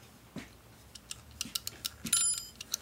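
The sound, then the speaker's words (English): A mechanical kitchen timer, set to 25 for pastries baking in the oven, ticks and clicks in a quick, slightly uneven series of sharp, bright taps, with a short high metallic ring near the end. No one speaks. “Okay, here's the timer.”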